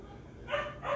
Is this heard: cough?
no